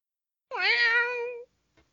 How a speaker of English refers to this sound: Ugly ass cat. Yeah, cat.